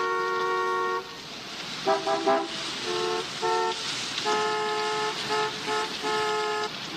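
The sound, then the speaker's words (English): Several car horns honk in overlapping bursts, some long and sustained, others short and repeated, blaring loudly over a constant rumble of street traffic. “Why are they all honking?”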